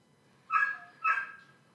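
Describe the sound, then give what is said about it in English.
A dog barks twice in quick succession, two sharp, fairly loud barks about half a second apart, with no voices over them and only a faint background hum. “Tell that goddamn dog to shut his fucking mouth.”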